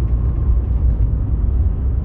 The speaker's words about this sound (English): There goes my pops on his motorcycle.